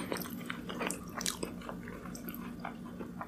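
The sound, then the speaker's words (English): Someone bites into coconut cream pie and chews: soft, wet mouth clicks and smacks repeating irregularly for a few seconds over a low steady hum, with no one talking. “This pie, although, on the other hand, let me get another. No, you've only taken one bite.”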